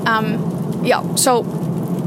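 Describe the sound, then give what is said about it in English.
A steady wash of rain patters on a car windshield throughout, in sunny weather with rain, with a few short, rising and falling vocal sounds briefly cutting in over it. “Oh, can you hear the raindrops falling on my windshield?”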